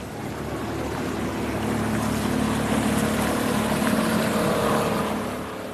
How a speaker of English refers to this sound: The faster the boats go, the bigger the waves, and the larger the impacts on the city's fragile wood foundations.